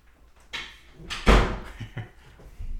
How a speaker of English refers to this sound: She's walking out of the room. There's the door.